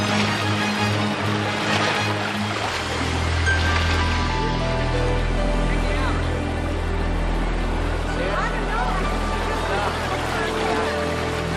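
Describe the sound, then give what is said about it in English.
Steady ocean surf washes in and out with a deep low rumble, a Baywatch-style wave fade transition rolling continuously, fairly loud and full, with faint muffled voices mixed beneath. “Man, that classic Baywatch fade.”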